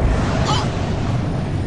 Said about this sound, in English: Oh. Now that was the liquor exploding.